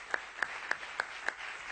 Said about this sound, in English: Big applause.